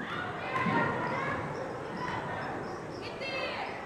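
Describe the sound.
A Boston high school basketball semifinal between O'Bryant and New Mission in a busy gym: a ball thumps on the hardwood, sneakers squeak sharply, and a steady murmur of crowd voices and shouts fills the gym.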